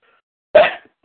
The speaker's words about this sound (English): Excuse me. I was going to sneeze for a minute.